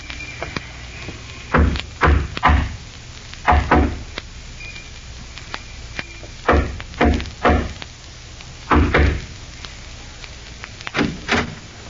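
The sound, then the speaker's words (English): A coded knock on a back door, three long and two short, repeated in spaced groups of sharp raps with pauses between sets, heard on its own against quiet room tone. “Remember the code knock? Yeah. 3 long and 2 short.”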